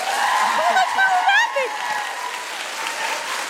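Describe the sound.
An audience claps out of sympathy for a contestant in a vote for a crown, with a dense, crackling wash of applause throughout, while a few voices call out and whoop over it in the first couple of seconds.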